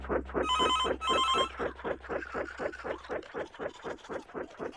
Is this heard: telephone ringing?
yes